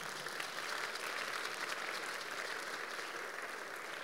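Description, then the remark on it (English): An audience claps for Jesus together in a dense, steady burst of applause that fills the whole clip at an even loudness, with no voices rising above it. “It's a good place to give Jesus a clap of it.”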